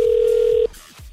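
A steady electronic telephone tone hums for just over half a second as a morning phone call is placed, then cuts off, leaving near-quiet with a few faint low thumps. No one speaks.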